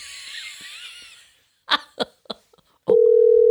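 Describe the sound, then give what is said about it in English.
A wheezy breathy rasp and a few sharp coughs or clicks give way to a loud, steady electronic ringback tone on a phone line, starting abruptly and holding on. “Pick up the phone!”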